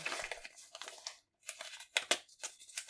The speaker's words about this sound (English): Had to use sticky notes so that when they were folded up, they would be very hard to unfold.